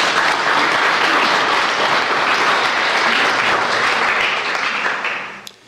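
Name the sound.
audience round of applause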